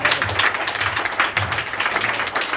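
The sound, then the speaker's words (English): A church audience applauds steadily for a few seconds, many hands clapping at once in a dense, continuous patter without any voices on top. “You can clap for that.”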